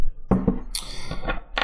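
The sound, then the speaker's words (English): Water collected from dewdrops is poured from a jug in a steady, hissy splashing stream, preceded by a couple of light glassy clinks. No one speaks. “He's pouring the water from a jug where he has where he's been collecting dewdrops, because that's the only drinkable source of water in the mysterious state of New Connecticut.”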